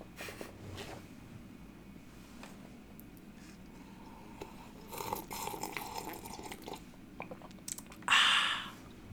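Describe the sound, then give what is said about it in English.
A sip of water is taken, with small wet mouth clicks and a soft slurp and swallow, ending in a brief, louder breathy exhale. No one speaks. “So I'll just go right into it. After a drink of water.”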